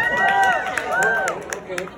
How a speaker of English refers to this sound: So who thinks that Miles is a good guy? Can I get some applause if you think Miles is a good guy?